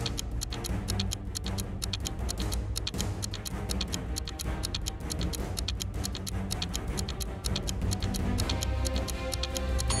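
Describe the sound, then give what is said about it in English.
A clock ticks steadily and crisply for the whole stretch, counting down ten seconds to answer a quiz question, its regular beats laid over a dense, low, droning music bed that keeps building tension. No one speaks. “Your 10 seconds are ticking.”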